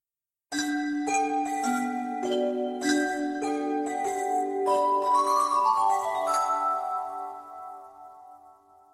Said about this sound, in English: I lifted my water glass and so did Cecile. We clinked them together